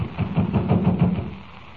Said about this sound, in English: The door seems to be locked. Well, we'll knock. Funny. Nobody answers. Well, we'll just keep knocking till someone does answer.